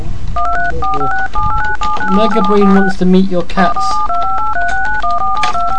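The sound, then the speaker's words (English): A rapid run of telephone touch-tone beeps, played as a tone break, steps up and down in pitch like a little tune. A voice speaks briefly over the middle before the tones resume. “You enjoyed the tone break?”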